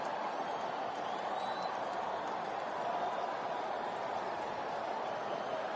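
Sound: baseball stadium crowd noise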